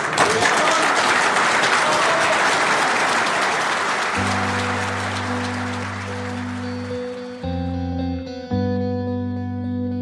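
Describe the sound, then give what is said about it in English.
A room of people claps in dense, steady applause after a woman finishes speaking and walks off; the clapping gradually thins out as a low sustained musical tone swells beneath it and carries on after the clapping fades. “The room breaks into applause.”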